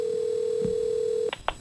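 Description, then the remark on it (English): A steady telephone dial tone hums for over a second, then cuts off as two quick touch-tone dialing beeps follow as a phone call is made, clear with no voices. “We decided the best way would be wait till his wife was out of the house, wait till his sons were at school, and make a phone call.”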